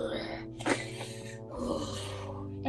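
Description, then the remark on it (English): A voice imitates loud snoring: two long, rasping, throaty breaths, one after the other, fairly loud, with no other sounds around them. “You barely manage as you kind of, your voice and whole body becomes quiet each step and like echoing as you eventually quickly get to what seems like the door, and the snore is just.”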